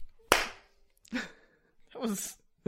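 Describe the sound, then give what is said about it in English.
A single sudden, sharp hand clap rings out loudly, made by a person bent over with arms contorted into the clap, followed by a couple of short vocal sounds. “You like bent over your body and just kind of like contorted your arms into a clap.”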